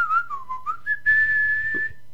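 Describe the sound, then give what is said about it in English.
A person whistles a short tune, a few gliding notes that dip and rise, then one long steady high note held for about a second before trailing off. “My whistle is way better.”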